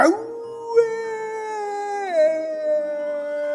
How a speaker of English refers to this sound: Howled the werewolf.